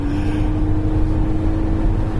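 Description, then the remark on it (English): A sports car engine drones loudly and steadily, a deep throaty hum that holds one even pitch for the whole moment, with no voices. “Sounds rorty.”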